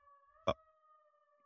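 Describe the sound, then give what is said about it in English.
A faint siren passing outside holds a steady tone throughout, with no talking, and a single short thump cuts in briefly partway through. “A siren? Should I cut that out?”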